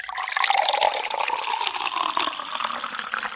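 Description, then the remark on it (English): Water pours steadily from a water cooler into a container for a few seconds, a continuous gurgling stream whose pitch rises slightly as it fills, fairly loud with no voices. “But if you're hot, drink some water around the water cooler.”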